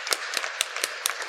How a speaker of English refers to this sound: Let's give the Lord another round of applause.